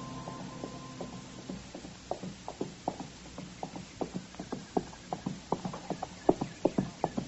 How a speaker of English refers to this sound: And just then I heard a horse coming along the trail and I stepped back and waited. Whoever it was would pass within a few feet of me.